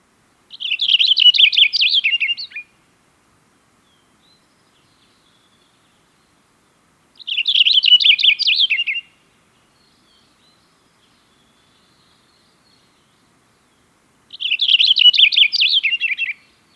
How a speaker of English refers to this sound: Cassin's finch sing a rolling warbler song with a fast series of short syllables. They can also mimic other birds, so be watchful of that.